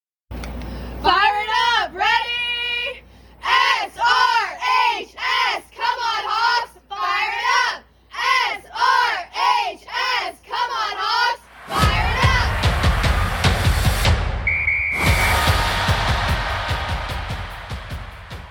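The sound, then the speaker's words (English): The South River (Seahawks) cheerleading squad shouts a chant in unison, short punchy phrases in a steady rhythm, then breaks into loud clapping and cheering that fills the last several seconds. “Until next week, we're going to leave you with a cheer from our South River cheer team.”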